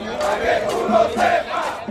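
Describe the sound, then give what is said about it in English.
A large crowd of thousands of cockfighters protesting a cockfighting ban, marching through the streets of San Juan, Puerto Rico, shouts and chants together in a steady, loud roar, with rising and falling waves of many voices blending into one dense wall of noise. “And so a few weeks later, at the end of January, thousands of them from across the island took buses and carpooled into the capital, San Juan, and they marched.”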